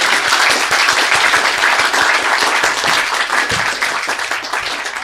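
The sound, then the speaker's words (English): Sustained audience applause, a dense crackle of many hands clapping at a steady loud level for several seconds, easing slightly toward the end, with no talking. “Another round of applause for Jane.”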